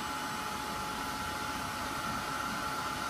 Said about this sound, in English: So this is a very hot arts and craft dryer. It's not a hair dryer, but it's very hot. It can even, you know, burn my fingers.